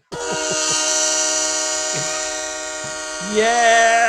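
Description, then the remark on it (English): A loud, sustained diesel train-style horn sound effect blares for about four seconds, a rich steady chord with a rumbling undertone, swelling brighter and wavering near the end. “Do you think we should give him a diesel engine right now?”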